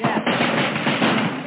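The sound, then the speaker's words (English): Rapid, muffled gunfire crackles in a dense, continuous burst on an old, narrow-sounding recording, with voices mixed into the noise throughout, as about 100 police shoot it out with snipers firing from apartment windows at Wooden Lake, the police firing back from behind parked cars. “Despite all the gunfire at Wooden Lake, not one person was wounded in the crowded buildings, and no police were hit.”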